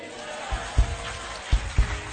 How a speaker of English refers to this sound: Are you clapping? Now let me hear your shout of praise.